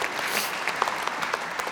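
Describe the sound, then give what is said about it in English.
A Baptist church audience applauds after a performance by kids, many hands clapping at once in a dense, steady crackle with a few sharper individual claps standing out, no voices over it. “Yeah, you can totally clap.”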